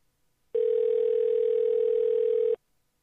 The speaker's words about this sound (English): Did he just hang up? Or was he listening to himself? It's ringing.